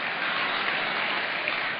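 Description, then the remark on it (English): A crowd applauds steadily, a dense wash of many hands clapping at once, fairly loud and even throughout with no voices standing out. “Don't clap for that.”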